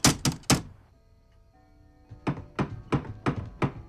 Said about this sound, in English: We see the parents arrive at their restaurant, and then we cut back to Annette's house where there's a knock on the door.